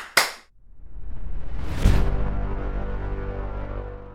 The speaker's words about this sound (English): Slap self.